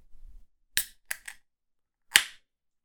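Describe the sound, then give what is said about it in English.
A beer can is cracked open: a few sharp metallic clicks, then a louder snapping pop with a short burst of fizzing hiss. No one speaks. “Let's give it a shot. Crack it open.”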